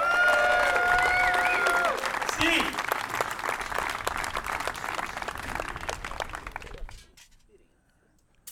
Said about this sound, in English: A big round of applause for Mr. High Fives athlete number one,